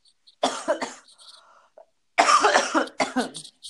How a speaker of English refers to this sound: Sorry, I don't know if you could hear me. I was trying to cough away from my microphone.